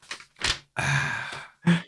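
Paper envelopes being opened: four short bursts of crisp rustling and tearing, the longest in the middle, each separated by brief pauses, with no voices.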